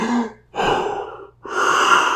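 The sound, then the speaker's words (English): Three big, deep breaths, a person demonstrating how they breathed while scuba diving, each a loud airy rush lasting about half a second, separated by brief pauses, with no talking. “These big, deep breaths.”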